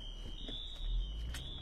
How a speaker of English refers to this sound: I'm just gonna pull over for a second because the fire alarm's going off at... Oh.